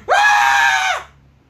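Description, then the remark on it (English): A voice imitates a hyped drama teacher's excited, high-pitched scream, a single sustained shriek of about a second that starts abruptly, holds steady and loud, then drops off, with no talking around it. “Something Mikey hears quite often. He gets fucking screamed at all the time.”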